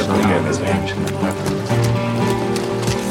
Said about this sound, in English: And as this progresses, that's when Mads Mikkelsen's character rides up on a horse.